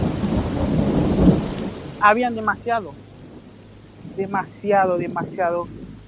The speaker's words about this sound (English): And it was there that Pascal first experienced the Darién's infamous rain.